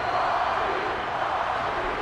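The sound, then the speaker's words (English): A wrestling arena crowd cheers and chants for The Rock during his match with Rhino, a steady, loud roar, a dense wash of many voices that holds evenly for about two seconds without any distinct words. “Jesus, this crowd is intense right now for The Rock.”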